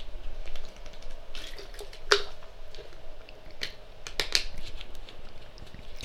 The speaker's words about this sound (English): I'm going to drink water real quick, getting a dry mouth.